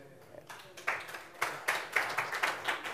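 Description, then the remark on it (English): A crowd breaks into applause, many hands clapping in a dense, crackling wash that swells in uneven pulses over a few seconds, moderately loud with no voices standing out. “Don't applaud, because it's a lot more than that.”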